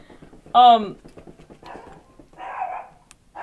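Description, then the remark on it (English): A dog gives one loud bark, followed a couple of seconds later by a fainter, rougher bark-like sound, with muffled voices murmuring in the background. “Bark, bark, bark, bark, bark, bark, bark, right at you.”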